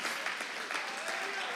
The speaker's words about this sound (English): Somebody ought to give God praise in the house. Clap your hands to the Lord.